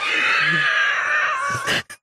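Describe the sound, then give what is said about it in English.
A woman lets out one long, loud, high-pitched scream, held strained for well over a second before breaking off into a harsh gasp and a short final cry. “She's screaming numbers.”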